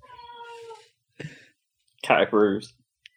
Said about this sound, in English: I don't know if that carried on the mic, but she's sort of just next to me meowing.